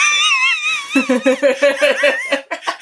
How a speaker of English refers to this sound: You do care. Listen to them all screaming, yes, we care.